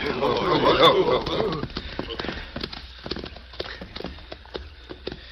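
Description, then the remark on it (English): Horses' hooves clip-clop steadily at moderate volume, a string of sharp, uneven knocks as the horses are urged from a stream into a dense thicket, with a busier burst of sound at the very start. “Arriving at the stream, they urged their horses into a dense thicket where they would be effectively concealed.”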